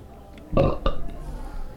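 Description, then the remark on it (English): A short, loud belch erupts, a deep burst followed by a second guttural pulse, then trails off into quiet background noise. “Two is, was that a belch?”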